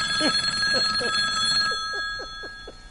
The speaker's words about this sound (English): Remember that back in the day? The phone would just ring endlessly. Pick up... Somebody pick up the phone!